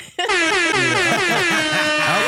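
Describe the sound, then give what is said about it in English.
A loud, sustained air horn blast kicks in abruptly and holds steady for about two seconds, brassy and harmonically rich, with a faint wavering low undertone beneath it. “You want to give them another air horn?”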